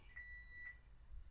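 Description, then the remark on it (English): A small horn gives a high, thin, buzzy beep, then a second short toot right after, fairly faint, ending with a brief sharp noise. No one speaks. “I'm beeping your horn there.”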